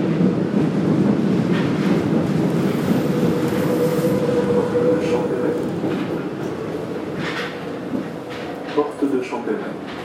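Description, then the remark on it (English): A metro train running, heard from inside the carriage: a loud, steady low roar with a faint whining tone, easing slightly midway, then a few clunks and rattles near the end. “My first time on the metro”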